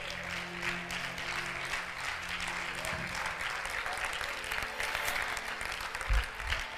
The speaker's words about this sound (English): Say it for yourself. Clap your hands, church.